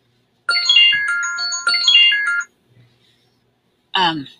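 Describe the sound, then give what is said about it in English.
A bright electronic incoming-call ringtone chimes from a computer in two repeated melodic bursts, loud, each about a second long, followed by a brief pause and a short burst of a voice. “It started coming in. I turned my phone off, but my computer picked it up.”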